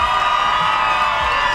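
A crowd cheers loudly and steadily, a dense wash of shouting voices and whoops with applause mixed in, sustained at an even level throughout.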